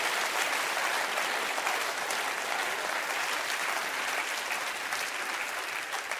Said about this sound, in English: Now look up here and clap your hands real big now. That's good. I love it. I love it.